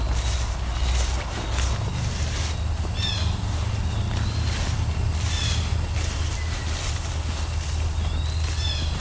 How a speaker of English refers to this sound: Another blue jay. Seems a bit closer up.